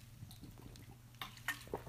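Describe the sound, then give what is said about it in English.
A quiet sip of water taken before reading aloud: a few soft, wet mouth clicks and a faint slurp toward the end, with a low steady hum underneath and no talking. “I'll get a little sip of water to prepare myself before reading this here.”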